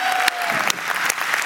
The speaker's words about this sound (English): All right, so this is not a hand clap for me, although I appreciate it, right? This is a hand clap for God. Let's give God a hand clap of praise.